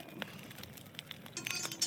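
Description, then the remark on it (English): Several dice clatter and roll in a tray, a quick run of bright, hard clicks and clinks that bunch up and grow louder toward the end before stopping. “Too many dice in the tray.”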